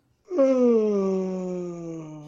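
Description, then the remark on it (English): A drawn-out vocal yawn, about two seconds long, starting with a sudden loud onset and sliding slowly downward in pitch as it fades slightly, with no other sounds or talking. “hit me with that yawn.”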